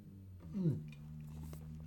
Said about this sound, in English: I'm doing a lot of talking, not a lot of drinking. So it's time for another nice big gulp of this this tasty beer.